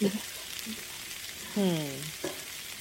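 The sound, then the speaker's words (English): Steady hissing sizzle of yam stir-frying in a hot pan, with faint scraping and a short voiced hum breaking in partway through. “So you're stir frying the yam.”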